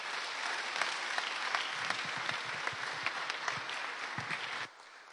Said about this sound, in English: Do you want to give these guys a round of applause?